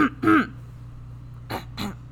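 Someone clears their throat with a couple of gravelly, voiced rasps, then follows with two shorter, softer throaty bursts over a faint low hum.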